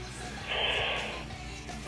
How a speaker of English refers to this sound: Excuse me. You have to edit that out. Hey, by the way, no, I won't. That's the first Kistorian yawn.